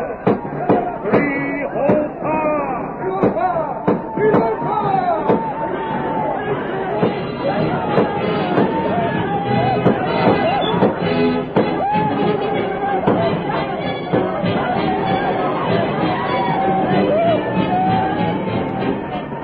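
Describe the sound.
Sharp, popping gunshots from outlaws attacking an Indian village ring out irregularly over a loud, chaotic crowd of shouting and clamoring voices that continues throughout.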